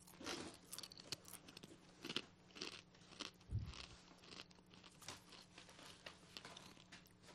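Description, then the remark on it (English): Loud crunching of Snack Factory everything deli style pretzel crisps being chewed, with repeated sharp crackling bites and grinding mastication in an irregular rhythm, no talking. “What are you munching on? Snack Factory pretzel crisps, everything deli style.”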